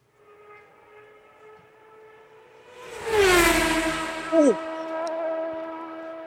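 A car sounds a long, steady horn as it approaches and rushes past, with a loud whoosh and the pitch dropping as it goes by, then fading away.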